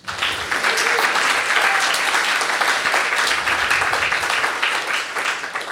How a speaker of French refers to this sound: Directrice générale d'Amnesty International, Canada francophone. On applaudit.